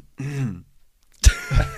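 A voiced throat clearing followed by a pause, then a sharp, harsh cough burst with a rough tail, both loud, with no talking.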